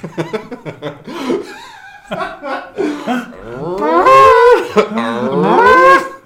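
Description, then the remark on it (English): A cow moos loudly: a few short, choppy lowing calls give way to two long, drawn-out moos with rising and falling pitch. “Israeli cows produce more milk per cow than any country in the world.”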